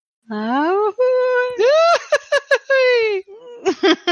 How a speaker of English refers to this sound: No, I want to hear Goofy's ah-hoo-hoo-hooey.